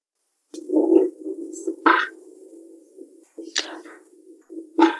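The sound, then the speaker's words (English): A thunder-imitating percussion instrument is shaken in four sharp bursts, each a rattling, twangy crash that settles into a steady, resonant low rumble between strikes. No one speaks. “It's this thunder, like, emulation, just percussion instrument.”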